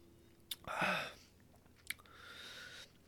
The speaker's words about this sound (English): Sorry, I was taking a sip of my drink today. It is Tito's water, Mio's flavoring. This one kind of tastes like cough syrup, but, you know, I don't really mind it.